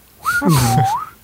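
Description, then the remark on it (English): Someone whistles an imitation of a slide whistle, like a Looney Tunes fall-down noise: one steady tone that glides smoothly downward and then curves back up, with a breathy rasp underneath, lasting about a second. “A lot of slide whistles.”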